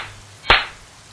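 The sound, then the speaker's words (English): A single sharp, bright clap snaps out of near silence, a crisp slap-like hit that fades quickly into a faint hum. “Clap, clap.”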